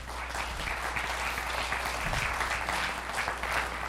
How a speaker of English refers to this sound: These are our missionaries. Let's go ahead and clap for them.